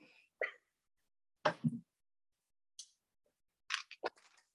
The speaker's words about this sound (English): I was just looking to my husband's side table and he has hemp seed oil that he takes every morning. And I know that because it makes this noise. Hold on.